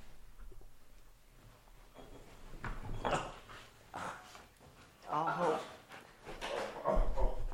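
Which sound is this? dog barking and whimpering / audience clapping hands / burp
dog barking and whimpering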